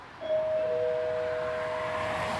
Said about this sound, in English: I'll get the doorbell.